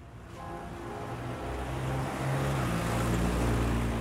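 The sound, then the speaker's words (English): Outdoor ambience on Montecito Drive, a windy, paved residential road in the Montecito Heights neighborhood of Los Angeles, dominated by a low, steady engine hum that grows gradually louder; no one speaks. “This is Montecito Drive in Los Angeles, where Clara's older sister Ola Mae lived.”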